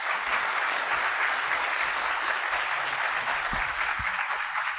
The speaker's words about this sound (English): and I'd like you to give the panel a big round of applause.